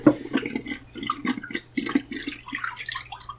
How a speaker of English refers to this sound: Oh, and I am ready to pour out my developer.